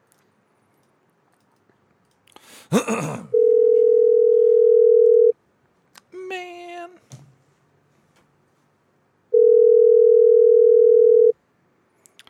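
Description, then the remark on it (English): Two long, steady ringback tones from an outgoing phone call to an Edward Jones Investments office, each about two seconds with a gap of several seconds between them; a brief rustle and a man's single spoken word come between. “Answer the phone already.”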